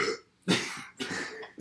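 Several loud burps in quick succession, about four rough, gravelly belches with brief gaps between them and no talking.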